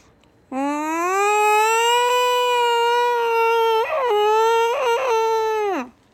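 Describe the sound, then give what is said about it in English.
A cat's mating yowl: one long, loud, drawn-out wail lasting about five seconds, holding a steady pitch with a few warbling breaks before sliding down at the end. No other sounds. “When I was trying to attempt sleeping at night, even though I was just so scared, this is what cats sound like when they are mating.”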